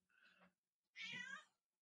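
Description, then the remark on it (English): Two meows from a cat at a closed door, a softer one followed by a louder, drawn-out, complaining yowl, with no one talking. “That is not a happy cat sound.”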